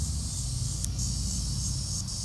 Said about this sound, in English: Is that just in my earphones? I think you might be hearing a far-off cicada. You're right. The microphone is picking up a cicada.